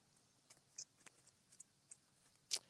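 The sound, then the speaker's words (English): Soft, irregular papery flicks and taps of a tarot card deck being shuffled, with a sharper snap near the end; quiet overall and no one speaks. “Okay, so let's shuffle here.”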